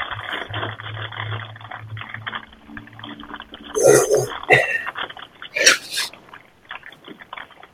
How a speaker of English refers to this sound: It's a lot of dice noises. Yep, sure is.